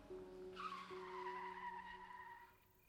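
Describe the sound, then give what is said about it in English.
A jeep brakes hard at night in February 1986 for a car blocking the way at the boundary between Tayabas and Lucena City. Its tires let out a loud, drawn-out squeal for about two seconds over a steady engine hum before the skid fades out. “And this is why, on this dark night in February 1986, Sumilang has to hit the brakes on his jeep at the boundary between Tayabas and Lucena City.”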